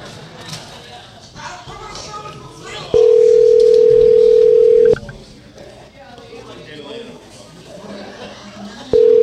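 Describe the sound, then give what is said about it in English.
A repeated phone call rings out unanswered over the line: a loud, steady ringback tone lasts about two seconds, falls silent for several seconds, then starts again, with faint background noise between rings. “Call him back again. Like hard R his phone number until he answers.”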